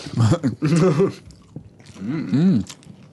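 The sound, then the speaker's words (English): Wet chewing of gum with smacking mouth sounds, mixed with muffled voiced mumbling in two bursts separated by a brief pause. “Is it chewing gum?”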